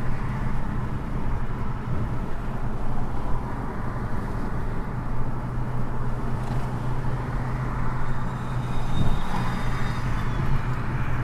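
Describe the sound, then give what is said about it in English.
Steady city road traffic in San Jose rumbles continuously, a dense low drone of passing cars with no clear breaks, fairly loud, with no voices. “San Jose traffic is not as inviting as one might think.”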